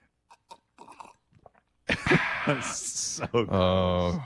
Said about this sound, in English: But even that doesn't matter as you take a gross sip of coffee. Please don't do that again.